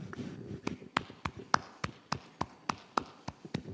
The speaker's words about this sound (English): We give a nice little golf clap.